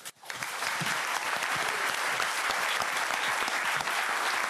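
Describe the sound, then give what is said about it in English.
Steady, dense applause from a sizable audience at the end of a lecture at the LSE fills the room, starting abruptly and continuing at an even, fairly loud level with no voices breaking through. “Right, just before you go, there will be another opportunity to clap”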